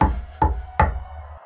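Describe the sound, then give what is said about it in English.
Three hollow knocks land in quick succession on an overturned boat, each leaving a deep, booming ring that lingers underneath. Fairly loud, with no voices. “But then there was a knock.”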